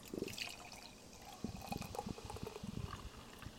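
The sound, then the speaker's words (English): Beer, a freshly opened double IPA, glugs and splashes into a glass, a bubbly pour with irregular gurgling pulses and a fizzy hiss above, with no talking. “I tried to screw that pour up so much, and it's pouring perfectly.”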